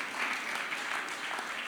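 A short stretch of soft, polite golf-clap applause, a small crowd clapping quietly and steadily, with no voices over it.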